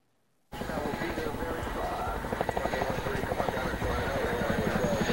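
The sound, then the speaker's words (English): The rotors of a Boeing CH-47 Chinook multi-role helicopter beat loudly: a dense, rapid, steady chop with a heavy engine roar underneath, starting abruptly after a brief silence and continuing throughout. “Prominent among them is the CH-47 Chinook. Boeing's enduring multi-role helicopter first took shape in 1956.”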